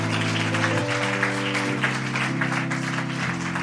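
A church audience, standing, claps steadily and loudly for their elder, a dense unbroken patter of many hands, while sustained organ or keyboard chords hold and shift underneath.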